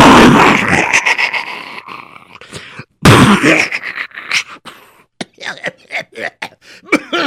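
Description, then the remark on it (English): A voice imitates cannon fire: two loud, rough booming blasts a few seconds apart, followed by a string of shorter sputtering, popping bursts with brief gaps between them. “And the cannons roared.”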